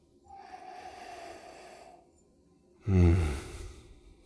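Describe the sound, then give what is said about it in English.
A slow, steady sniff of whiskey in a glass, drawn in through the nose for about two seconds, then a pause and a louder, breathy exhale like a satisfied sigh. No one speaks. “So let's give it a nose.”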